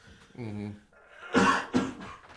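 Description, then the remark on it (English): A brief voiced murmur, then two harsh coughs in quick succession, the first louder and the second following about half a second later. “That was a cough.”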